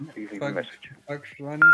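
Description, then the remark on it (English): A voice talks, then a loud, steady electronic phone tone cuts in near the end, from a call dialed to the right number that goes unanswered. “It's the right number and he's not picking up.”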